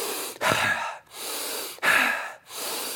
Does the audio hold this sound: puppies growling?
no